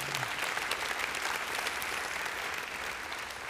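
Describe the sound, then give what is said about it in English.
A large audience applauds steadily, a dense wash of many hands clapping at once, sustained and fairly loud throughout with no voices standing out. “Yeah, you can clap if you want, yeah.”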